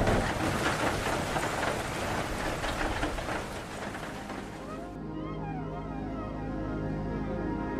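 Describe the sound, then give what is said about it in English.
Water pours down everywhere in a dense, steady roar for about five seconds, then the hiss thins out and soft, wavering tones drift over a lower, duller wash. “There is water pouring literally everywhere.”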